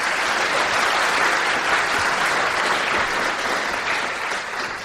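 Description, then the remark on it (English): An audience at the LSE claps for two speakers in a sustained, dense round of applause, a steady wash of many hands beating at once with no voices over it, easing off slightly near the end. “So a big round of applause, actually, for both of you.”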